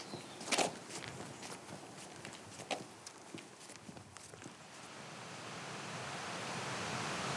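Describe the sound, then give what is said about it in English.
Langstrath Beck, a mountain stream above its confluence with Greenup Guild below Eagle Crag, rushes in a steady, hissing roar that swells louder toward the end, with a few crunching footsteps and knocks over the water during the first half. “Crashing sound in the background of the beck. That's Langstrath Beck.”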